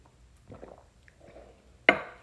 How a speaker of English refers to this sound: Let me get a sip of my tea. Hold on 1 second.